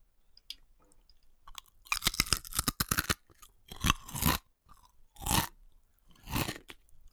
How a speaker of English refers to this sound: So first up is this. I'm going to pop one of these into my mouth. I'm going to give it a crunch. And I need to ask you what you think it is from a Frazzle, a Square Crisp or a popcorn.